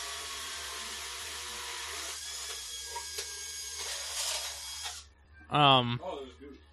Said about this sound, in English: So, what are you hearing right now, other than chainsaws?